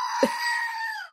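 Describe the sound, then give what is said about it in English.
A single loud, drawn-out goat scream lasting about a second, harsh and strained with a sharp burst at its start, then cutting off abruptly into silence. “Oh, it was the goat, the screaming goat.”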